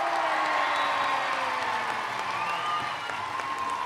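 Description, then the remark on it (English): A large football crowd at Sixfields, on their feet, cheers and applauds a home win in a steady, loud roar, with scattered whistles and shouts rising above the dense clapping throughout. “And the crowd are on their feet, which was brilliant.”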